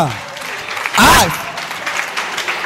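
A church audience claps steadily in a dense, continuous patter, and partway through a single loud vocal exclamation rises briefly above the applause before the clapping carries on.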